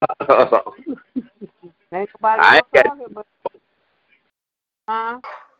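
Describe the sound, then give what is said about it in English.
A dog at a daughter's house barks in short, sharp bursts: a loud cluster near the middle and another pair toward the end, with muffled voices and brief quiet gaps between. “this was her mother-in-law's dog, and she has two, but Cody is the mouth”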